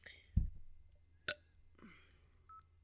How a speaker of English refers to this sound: I had LaCroix once today. I will burp for the rest of my life.